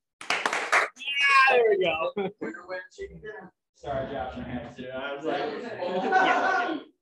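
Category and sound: crowd, group clapping hands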